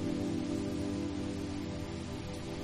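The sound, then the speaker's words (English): Steady rain falls in a soft, continuous hiss, evenly spread and fairly quiet, with a low sustained hum running underneath the whole time. “As you collect the herbs for your amazing meal, it begins to rain.”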